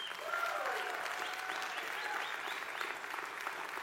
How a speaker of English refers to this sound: So if we can, let's just give Pastor T a round of applause, please.